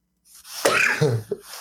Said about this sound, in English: Shit. Are you okay? I was sneezing. I told you it's hard to sneeze in this mask, bro.